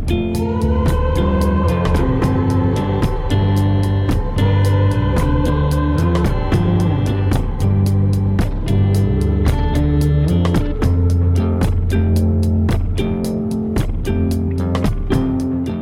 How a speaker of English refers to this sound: As we listen, pay attention to the heavy reverb on his voice, the effect that makes it sound distant, echoey, almost cavernous.